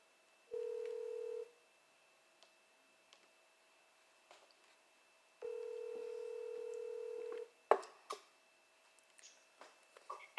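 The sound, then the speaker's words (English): Two long, steady telephone ring tones sound a few seconds apart over a line as a call is placed to a guest, with faint clicks between them, then a burst of clattering handset noise as the call is picked up. “I'm going to give her a call right now, see if she fucking answers the phone.”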